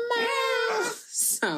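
animal, cat screaming

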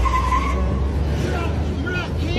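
vehicle, truck driving away

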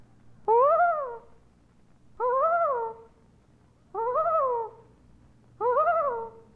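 bird, common loon call

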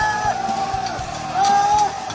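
crowd, crowd yelling

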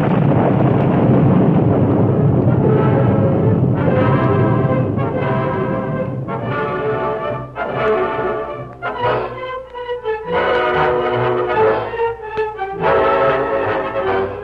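nature, thunderstorm with rolling thunder

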